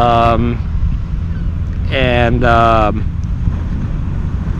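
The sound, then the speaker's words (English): Windy beach ambience: a steady, loud rumble of wind buffeting the microphone fills the whole stretch, with a few brief voice-like tonal sounds rising over it at the start and middle. “I am so glad I did this podcast, came out to the beach, first of all, and did this podcast.”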